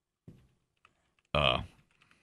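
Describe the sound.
Sparse, soft keyboard clicks tap out at irregular intervals, interrupted by a short, loud burst of voice in the middle.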